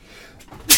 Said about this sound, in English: Oh, excuse me, I'm about to sneeze.